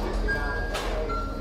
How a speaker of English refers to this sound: Train comes, they hop on the train, take it a couple stops